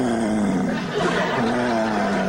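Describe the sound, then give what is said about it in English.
A man imitates a dog's growl: one loud, rough, rumbling snarl held steadily for about two seconds, gravelly and low-pitched with a slight waver, with no words spoken. “He literally growled like a fucking dog.”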